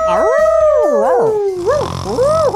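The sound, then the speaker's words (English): A person imitates a confused dog howling, drawing out a long, wavering, high-pitched vocal cry that rises and falls, loud, with a second howl joining in near the end. “Where's your howl noise? He was doing the confused dog.”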